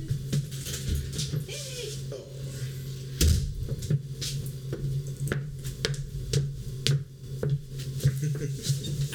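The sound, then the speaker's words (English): A cat scratching at a door: irregular bursts of dry scraping and clawing, some sharper and louder than others, repeating over a steady low hum. “But, oh, I think I got another cat. Scratch it at the door.”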